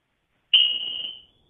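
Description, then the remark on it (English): A smoke alarm shrieks with a loud, piercing high-pitched tone that holds for most of a second, cuts out, then starts beeping again, with no voices present. “My alarm just went off my top. Are you smoking something?”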